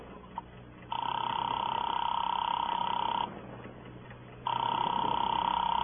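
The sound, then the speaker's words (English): A telephone being dialed, with two long, steady electronic tones on the line separated by a short pause, sounding thin as if through a handset, with no talking. “Give me that phone.”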